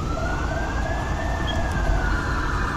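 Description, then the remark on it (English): A fire truck siren and an ambulance siren wail steadily over heavy low traffic rumble, the pitch sliding slowly up and back down, with a fainter second tone running beneath it, as the fire department and ambulance arrive at Del Perro. “Man, the fire department is quick. Good God. And so is the ambulance when they spawn on Del Perro.”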